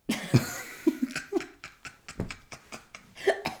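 A coughing fit: a rapid string of harsh, close-up coughs, about a dozen bursts over a few seconds, mixed with breathy, laugh-like gasps between them.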